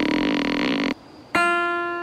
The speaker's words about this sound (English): So, you just shot an empty bow? Why would you pretend to shoot an arrow?